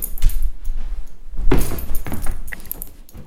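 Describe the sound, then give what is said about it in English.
The collar tags of Remy, a dog, jangle in quick metallic bursts, with a loud cluster of clinks around the middle and lighter rattles before and after. No voices are present. “And then also the jangle of his bling on his collar.”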